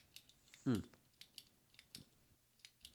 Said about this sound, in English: you typing while we're talking? You're not even focused on what I'm saying? Oh, fuck, mate. No, I'm not typing. Oh, yes, you are.